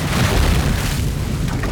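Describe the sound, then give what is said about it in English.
A massive ship, the Widow, held by a tightening heavy iron chain, crashes to a halt with a heavy, deep boom that rolls into a sustained low rumble and grinding crunch, loud throughout for about two seconds, with no voices. “The widow crashes to a halt.”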